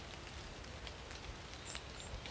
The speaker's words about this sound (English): Just approaching the canopy of the oak, and I can hear, in fact, I can see the rain dripping off the leaves here. Can you hear that?